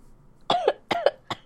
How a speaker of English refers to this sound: I'm gonna cough. It's fine.